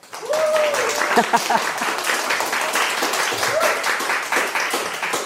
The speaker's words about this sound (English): Excellent, excellent applause. They're not cued at all.